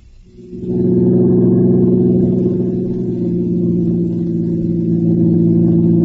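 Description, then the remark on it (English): A steady, loud car engine drone rises in after a brief quiet start and holds a constant low hum as the car cruises along at an even speed. No one speaks. “I'm sure tired of doing nothing but driving around in this car.”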